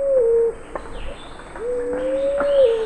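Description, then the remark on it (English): A fruit dove, a forest-dwelling dove of the South Pacific, coos twice, a short low note followed by a longer, drawn-out mellow coo. The calls are clear, with faint forest chirps in the background. “Today on Bird Note, fruit doves, one gorgeous group of birds.”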